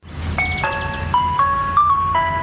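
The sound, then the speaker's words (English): A Mr. Whippy ice cream van chime plays Greensleeves, a bright electronic melody of sustained, stepping notes ringing out loud over a low background rumble, with no one talking. “I know the trucks are still at events and things, but I don't see or hear Mr. Whippy driving around the streets.”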